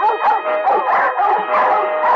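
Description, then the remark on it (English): Several dogs at a kennel bark continuously and overlap, a dense chorus of loud yaps and barks with occasional whines, as if many animals are penned together. “The next morning, I drove out to the Seabreeze Kennel.”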